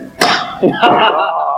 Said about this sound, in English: But the biggest surprise came from the unveiling itself during a demonstration of the truck's supposedly unbreakable windows. Yeah. Shattered not once, oh my well, but twice.